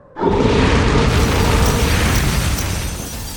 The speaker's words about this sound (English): All trace of the White Walkers blinks from existence beneath Drogon's blast. Not even their powdered remains surviving the white-hot heat of the dragon's fiery breath.